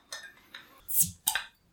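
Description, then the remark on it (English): Several quick, bright glassy clinks of beer glasses tapped together in a toast, spaced unevenly over a second and a half with faint background noise between them. “Clink. Clink.”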